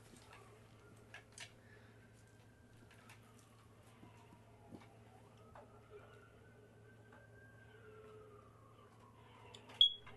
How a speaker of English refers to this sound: There it is. The beep. Is your smoke detector battery almost dead or something?